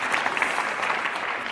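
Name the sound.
audience clapping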